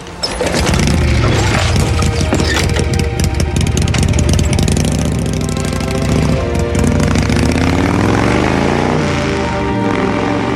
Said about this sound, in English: Is there anything more disrespectful than just revving your motorcycle as you drive away from your kid that just wants to be with you?